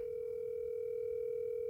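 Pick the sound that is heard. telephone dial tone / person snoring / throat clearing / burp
telephone dial tone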